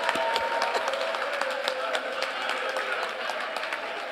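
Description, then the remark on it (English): A scattered round of audience clapping by the men in the audience runs steadily for several seconds, many hands with a faint crowd murmur beneath it. “So those of you who are using that as an excuse, it's only the brothers who are clapping.”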